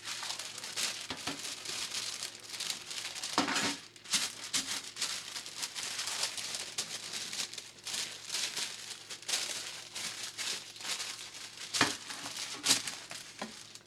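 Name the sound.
parchment paper crinkling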